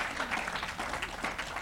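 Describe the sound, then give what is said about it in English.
A church audience claps together in dense, steady applause as a hand clap of praise to God, many hands overlapping into a continuous patter for a couple of seconds with no pause. “God, we just trust you today, and let the church of God give God a hand clap of praise today.”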